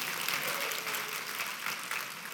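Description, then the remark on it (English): A large group claps steadily for the kids who went to kids camp, producing a dense, continuous wash of applause without pause for a couple of seconds, moderately loud. “That's also a great moment to clap.”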